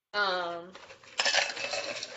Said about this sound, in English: So you put your cotton candy in your martini glass, and then you're going to grab your shaker. Shaker needs a little ice in it. I got a little ice.